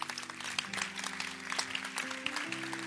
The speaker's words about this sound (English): In fact, you can clap your hands.